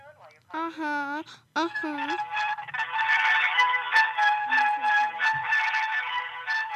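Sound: phone ringing on speakerphone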